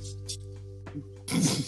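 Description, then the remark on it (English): A dog barks wildly in short, rough, growly bursts, a couple of brief yelps followed by one loud, harsh outburst at the end, over a steady low hum. “I got my dog wilding on me.”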